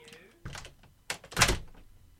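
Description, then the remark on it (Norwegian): A studio door is pushed shut, with a few dull thuds and a louder final bang as it closes, followed by a short fading rattle. “Lukk døra.”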